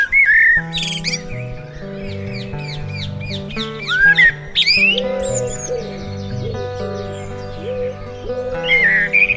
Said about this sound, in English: Alongside all of this is the constant soundtrack of the birds, ever present from dusk till dawn. Pigeons, blackbirds, magpies, and of course